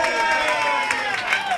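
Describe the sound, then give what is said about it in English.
An arena crowd cheers and applauds Michael Neuberg in a steady, dense roar, many voices blending with scattered clapping throughout the short stretch, with no single voice standing out. “The crowd loves him.”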